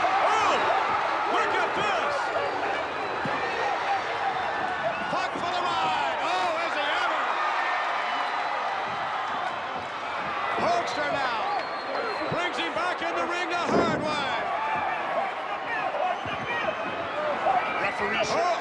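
A wrestler is slammed by a suplex onto a wrestling ring mat, booming once over a loud, continuous crowd roar with scattered cheers and shouts throughout.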